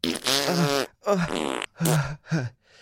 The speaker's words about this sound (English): The farting scares me. I'm not going back in there. Farting is normal. That's it. Probably just indigestion.